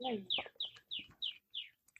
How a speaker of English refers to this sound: Oh, I can hear your birds, and they're making me happy. We just had some rain, and so they got all quiet. They were nice and loud here too.